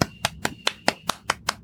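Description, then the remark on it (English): A single pair of hands claps about eight times in a quick, steady rhythm, each sharp slap crisp and bright, with no talking over it. “Round of applause. Sorry for awkward sound effects. Clapping ASMR.”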